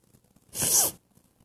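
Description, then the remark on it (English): A single sharp sneeze bursts out of near silence, a loud hissing blast lasting about half a second with bright, airy noise before cutting off abruptly. “Do you have the sniffles?”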